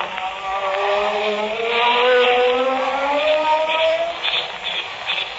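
A ray gun hums as it burns through handcuffs: a loud, buzzy electronic whine that climbs slowly in pitch and holds steady for several seconds, with no voices.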